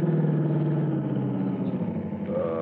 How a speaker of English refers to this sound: Hey, what's that coming, Hooksy? Uh-oh. Police car, I guess.